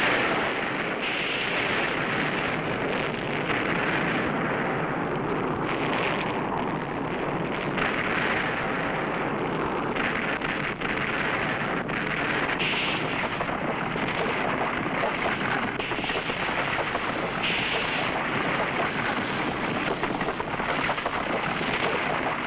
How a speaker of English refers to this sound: Second underground nuclear test took place. This is what happened.